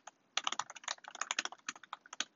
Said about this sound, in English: Alrighty. Apologize if you guys can hear my typing. I type really loud.